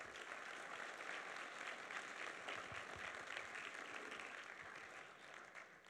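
Sustained applause from an audience at Sterling College, a Christian campus, a dense, even patter of many hands clapping at steady loudness for several seconds with no voices standing out.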